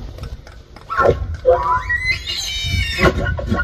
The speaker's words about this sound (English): But that sound, I loved it when I heard it. I had to back it up and go, is that the sound that an elk makes when it's in the rut or whatnot?